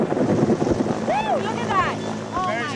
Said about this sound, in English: Take one 1,400-pound black rhino. A young female. Two veterinarians. Three game capture specialists. A 52-year-old helicopter. And you get this.